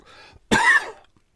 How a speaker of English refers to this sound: Ooh, cough.